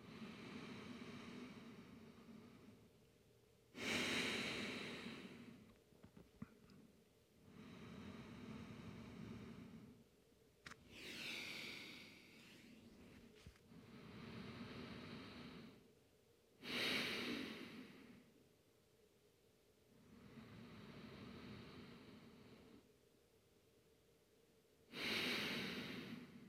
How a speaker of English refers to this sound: Nice and silent, deep breathing.